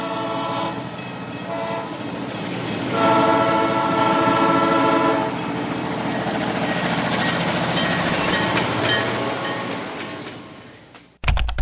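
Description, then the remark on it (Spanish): A train sound effect: steady rumbling and clattering of a moving train, with a loud horn blast swelling in the middle, then the noise cuts off abruptly at the end. “nos subiremos por unos minutos en el tren de los patrocinadores que hacen posible este lindo programa.”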